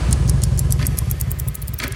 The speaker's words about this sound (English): Draeger and Hez mount their motorcycles and head back to the chop shop.